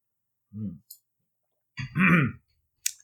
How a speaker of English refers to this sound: Excuse me, just have to take a sip of water.